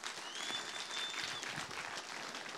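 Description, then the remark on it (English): People at Renew Life Church clap steadily for first-time guests, a dense wash of applause filling the space for a few seconds with a faint whistle rising above it. “If this is your first time here at Renew Life Church, can we give all of our first-time guests a round of applause?”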